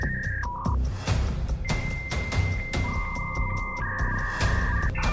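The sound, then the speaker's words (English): A dial-up modem connecting to the internet: shrill steady tones that jump between pitches, broken by harsh bursts of static and crackling hiss, fairly loud and continuous for several seconds with no talking. “No, that was the modem. I was trying to connect.”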